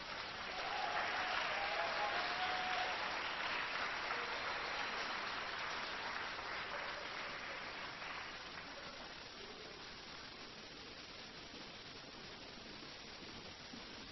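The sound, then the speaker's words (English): An audience claps steadily for a speaker after a talk about boldness, a dense wash of many hands that swells early and then gradually thins and softens, with a few faint whoops or cheers near the start. “Let's give Charles another round of applause.”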